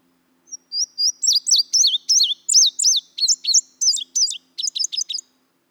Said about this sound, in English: Both the summer warbler and the indigo bunting just remind me of summer sounds with their very melodic and high-pitched songs. The indigo bunting says, fire, fire, where, here, here, put it out, put it out.